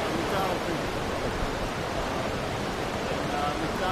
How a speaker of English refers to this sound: The biggest lake in the park is McDonald Lake, which is fed by McDonald Creek, which you can hear rushing in the background